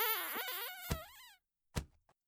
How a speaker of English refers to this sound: Ah, I found something. A door. A handle. Let's just give this a pull.